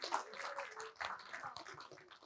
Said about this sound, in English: Look, they are amazing. Come on. A round of applause for Christmas jumpers.